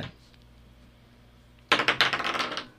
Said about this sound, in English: Uh-oh. And I've rolled the dice directly... Into the abyss. Into the abyss behind the computer.